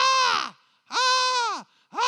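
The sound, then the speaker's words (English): A voice mimics a crow with three loud, harsh caws in a row, each one drawn out and dropping in pitch at the end, separated by brief pauses, with nothing else heard. “I mean, it's like a crow stuck in your ear.”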